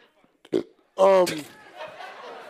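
A single loud burp rumbles for about half a second, preceded by a short breathy sound and trailing off into quiet mumbling.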